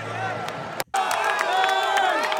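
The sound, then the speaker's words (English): A big stadium crowd roars and cheers loudly after a pass interference call at a football game, with clapping and shrill whistles woven through the dense wall of noise, briefly cutting out before surging right back. “That might have been the loudest the crowd got all night.”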